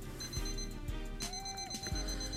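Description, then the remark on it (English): A small alarm clock on a bedroom nightstand rings with a steady, high-pitched electronic beeping, fairly loud, over a low background hum and a few soft thuds; the clock reads 3:46 a.m. “On the nightstand sits a small alarm clock.”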